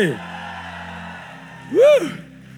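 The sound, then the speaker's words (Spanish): A church audience gives a loud, brief victory shout that rises and falls near the end, after a shorter, fainter cry at the very start, with a steady low hum underneath. “Da un grito de victoria. Dalo más fuerte.”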